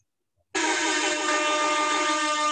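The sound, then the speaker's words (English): A loud, blaring Rasta air horn sound effect kicks in abruptly after a brief silence and holds a steady, harsh, buzzy tone with rich harmonics for about two seconds, with no voices over it. “Because I wouldn't be my obnoxious self without my Rasta horn.”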